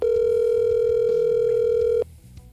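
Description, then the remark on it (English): A telephone ringback tone on an outgoing call from an old Mickey Mouse telephone: one loud, steady electronic purr lasting about two seconds, then cutting off into near silence. No one speaks. “You got the old Mickey Mouse telephone. Yep. And it's ringing, though.”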